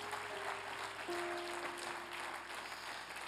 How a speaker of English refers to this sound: One more time, clap your hands unto the Lord.